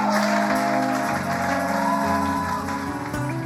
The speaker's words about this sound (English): Oh, let's clap for Sir Willie.